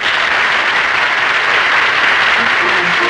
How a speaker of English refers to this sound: That's funny. They told me there would be applause here.